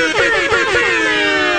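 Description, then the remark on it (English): A loud, blaring air horn sound effect, a few quick stuttering blasts that run into one long sustained honk filling the whole moment, with no talking. “Can I get a little air horn?”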